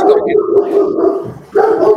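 A dog named Ellie barks loudly and insistently at a delivery person at the door, her drawn-out, howling calls running almost continuously with one short break before starting up again.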